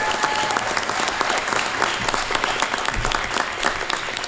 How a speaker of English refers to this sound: Let's give them a warm round of applause to get things fired up.